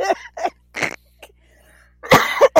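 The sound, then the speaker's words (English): A person coughs several times: short, harsh bursts, then a pause, then a louder, rougher fit of coughing near the end. No one speaks. “Who is dealing with, like, something like I am, where I'm trying not to cough.”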